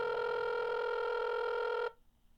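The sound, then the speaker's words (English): A telephone rings with a single steady electronic tone that lasts about two seconds and then cuts off abruptly into near silence. No one speaks. “The phone kept ringing.”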